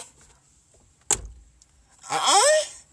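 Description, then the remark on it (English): A single sharp thunk like a car door slamming shut, followed after a short pause by a loud, breathy, sweeping vocal noise. “Do it and close my door.”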